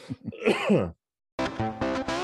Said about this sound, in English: Ooh, perfect time to cough right at the end.